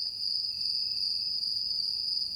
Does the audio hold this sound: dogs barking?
no